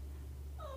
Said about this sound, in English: That's the cat meowing in the story. So the cat meowed at her.